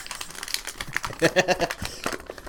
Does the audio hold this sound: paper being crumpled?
yes